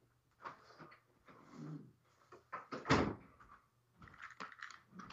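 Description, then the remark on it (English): A door swings and shuts with one firm thud midway through, surrounded by shuffling movement and light handling noises before and after. “I have to shut the door.”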